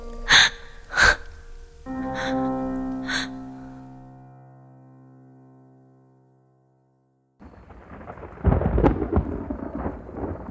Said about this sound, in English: Thunder rumbled high above the trees